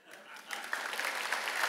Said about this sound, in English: 3,000 people. That is not a clap for me, by the way. That is a clap praising Jesus, the risen Jesus.